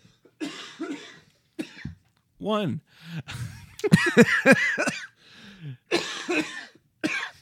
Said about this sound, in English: I'll see how long I can go through this episode without coughing.